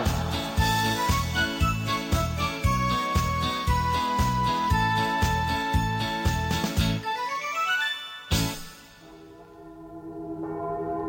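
Bells of Hamburg's St. Michael's Church (Michaeliskirche, the Michel) ring in a quick, steady run of overlapping strikes, then a rising cascade of brighter tones ends in one loud clang whose ringing slowly fades away. No one speaks.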